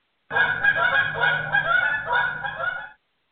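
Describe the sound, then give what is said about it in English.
A flock of geese flies by, honking overlapping calls in a dense, steady chorus for a few seconds, loud, then cuts off abruptly. No one speaks. “But our team has to strategize their first move as a flock of geese flies by.”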